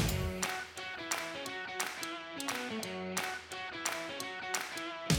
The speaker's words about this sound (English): That's too much clapping.